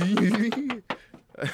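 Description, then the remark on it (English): A voice rapidly imitates Flintstone-esque cartoon feet scrambling as a character gets out of bed, a quick run of repeated, choppy syllables for under a second, then a few scattered vocal bursts, fairly loud. “He's got like, he's like getting out the bed and his feet are like.”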